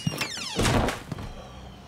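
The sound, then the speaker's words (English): A handful of dull, irregular knocks on the door of a closed swamp tour business with a big closed sign, moderately loud, with no voices, just a few muffled thumps scattered over a couple of seconds. “It's a big close sign, and you're still knocking.”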